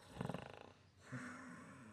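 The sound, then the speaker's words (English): A mild, quiet snore: a rattling, fluttering exhale followed by a brief pause and a softer, humming drawn breath, with no one speaking. “You faintly hear a kind of a mild snore.”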